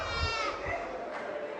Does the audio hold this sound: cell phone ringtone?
no